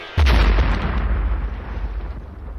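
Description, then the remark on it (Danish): A single massive explosion of a missile carrying 165 kilos of explosives, built to sink large enemy warships, detonating after clipping the top of a spruce tree by a summer-house area at Lumsås on Zealand; sharp onset and deep, heavy low-end boom, then rumbles and rolls away for a couple of seconds. “Det er altså en relativt stor eksplosion.”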